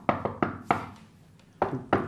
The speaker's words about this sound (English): Exactly, or like the knock, who invented that knock. Hey, fucking check this out.